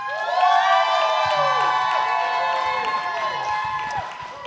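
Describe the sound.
A loud crowd cheers and applauds to vote for the team Planned Parenthood keeping its title, with many high whooping voices over a steady wash of clapping, sustained for about four seconds before easing off slightly at the end.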